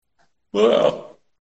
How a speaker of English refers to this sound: We both yawned at the same time.